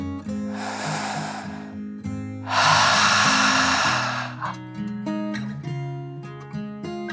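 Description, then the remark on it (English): A deep breath in, then a longer, louder breath out, both soft and airy, with gentle sustained music tones playing underneath. “Julia smiled and took one more deep dragon breath, in and out.”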